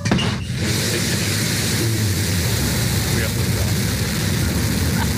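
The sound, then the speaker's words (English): Jeff Bezos's New Shepard rocket lifting off for a flight into space: a loud, continuous roar with a dense, crackling low rumble that holds steady and unbroken for the whole stretch. “Here's the liftoff.”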